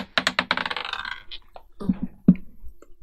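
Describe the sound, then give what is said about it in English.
A small die clatters across a hard tabletop, a quick burst of sharp rattling clicks that settles into a few scattered taps, fairly loud with no talking. “Because anyway, the dice was closer to me.”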